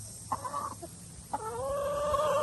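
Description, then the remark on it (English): About 30 chickens cluck in a coop, a short call followed by a longer, drawn-out squawking vocalization, clear over a low background hum. “I know it attracts bugs, but there's 30 birds in here, so they'll eat the bugs.”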